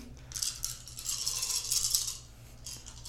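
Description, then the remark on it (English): A handful of dice, rolled for a stealth check, rattles and clatters continuously for about three seconds, a bright, dense clicking that swells and fades, with no voices over it. “The soothing sounds of dice.”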